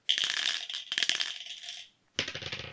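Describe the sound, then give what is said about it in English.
A six-sided die, one of a set from D6 to D100, rattles and clatters across a hard surface in quick, bright clicks, settling after a couple of seconds, followed by a brief pause and a short, fuller clattering burst; it lands on a one. No voices. “So I've got a D6 through a D100. And whatever the dice rolls on, I will click that.”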